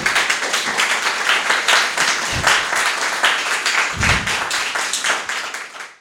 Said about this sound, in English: Okay, so can we have a warm round of applause, please, for our two readers?